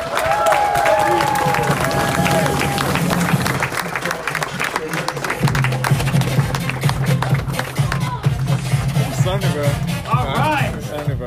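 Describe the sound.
A crowd claps in a steady, dense round of applause that lasts the whole stretch, with a few whistles and shouts rising above it early on and a low murmur of voices underneath.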